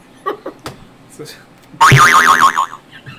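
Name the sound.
cartoon boing sound effect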